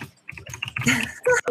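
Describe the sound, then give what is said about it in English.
Rapid typing on a mechanical computer keyboard while looking something up, a quick run of sharp clacking keystrokes that quickens into a dense flurry near the end. “I like the clickety clacking atmosphere. The manual keyboard.”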